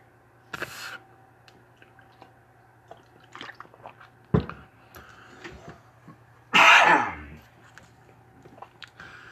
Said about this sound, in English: And for those who are listening and occasionally hear me cough, eventually I'm going to learn how to edit that shit out so it sounds better, so it's not that annoying cough time, because I smoke a lot, don't drink quite enough water